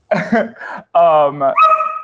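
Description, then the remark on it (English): A dog barks and whines in a few short, harmonic bursts over about two seconds, with brief gaps between calls and no other sound around them, while its owner wrestles with it. “Sorry, I'm also wrestling with my dog right now.”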